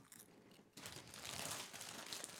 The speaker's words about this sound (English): We're going to toast. You're going to hear us chewing, and it's going to be annoying for 30 seconds, but this is too good to not do.